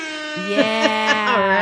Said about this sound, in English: Hang on a second. I didn't even test out the air horns.